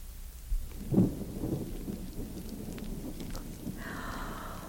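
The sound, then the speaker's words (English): A thunderstorm blowing up outside: a deep, rolling rumble of thunder swells early on and fades, while steady rain hisses throughout at a moderate level. “Oh, my, sounds like a storm blowing up outside, doesn't it, children?”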